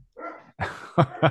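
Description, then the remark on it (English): A dog gives a whiny yelp followed by a quick series of sharp, loud barks in the background, with two short punchy barks at the end. “My dog is barking in the background as well, so it's going great right now.”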